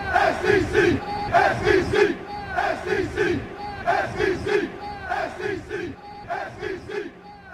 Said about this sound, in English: We got the SEC chant going. It just means more. I didn't hear any music, but I did hear the SEC chant.